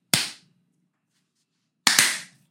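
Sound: single hand clap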